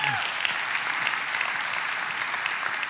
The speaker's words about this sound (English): And you have to give the Lord a hand clap on that. Man, seriously.